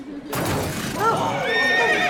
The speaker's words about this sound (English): What in God's name? The traffic! It's gone wild! What scared the horses?